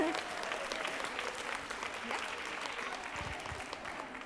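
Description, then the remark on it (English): A group of people at a contest claps for the winning table in a dense, sustained burst of applause lasting a few seconds, fairly loud, with faint voices mixed in beneath the clapping. “Let's give this table a round of applause.”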